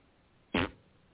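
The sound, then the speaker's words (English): A single short, loud raspberry blown with the lips by an adult, a buzzy, sputtering fart imitation lasting about a quarter second, against near silence. “I'm an adult and I just made a fart noise with my lips.”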